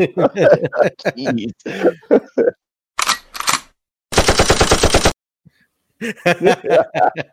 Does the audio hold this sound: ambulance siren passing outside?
no